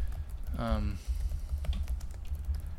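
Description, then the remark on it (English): Quick, irregular clicks of typing on a computer keyboard tap along steadily, with a short voiced murmur rising briefly over them early on. “We're going to type and you're all going to hear us banging on the keyboards, but...”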